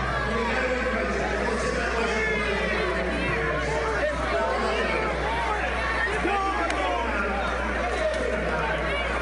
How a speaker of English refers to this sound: Oh, get him the hell out of here, get him the hell out of here. And the people are cheering.